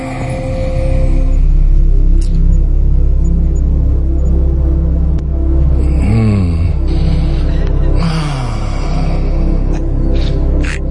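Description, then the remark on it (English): Loud, heavy breathing made by a voice in a montage, a run of deep, rasping inhales and exhales strung together, with a couple of strained, wavering gasps partway through. “Here's …'s weird breathing.”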